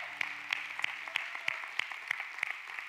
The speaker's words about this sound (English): Come on, let's give the Lord a round of applause.